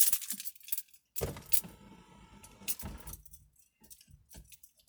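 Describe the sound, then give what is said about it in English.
Car keys are pulled out of a vehicle after driving and jangle in a metallic clatter, with bright clinking bursts and a low thump, then fade into a few quieter rattles. “Matter of fact, just to prepare myself, let me just take the keys out right away.”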